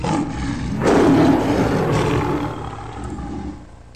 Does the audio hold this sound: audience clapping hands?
no